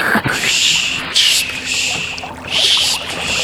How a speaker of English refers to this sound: Get the oars. Get them out. Let's get this canoe in the water.